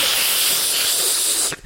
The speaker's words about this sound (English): Someone told me off for vaping during the podcast because they said it sounded... whatever they said. Oh, anyway, through the microphone.